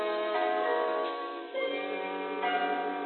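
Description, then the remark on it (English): A great clock chimes out the hour of three from a darkened stairway, its deep, resonant bell tones ringing on and overlapping as a new strike sounds every second or so, with no voices. “From the darkened stairway, the great clock chimes out the hour, 3:00.”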